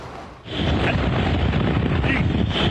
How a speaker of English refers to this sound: Ian's hurricane force winds and record storm surge is dangerous for the millions of residents across Florida's west coast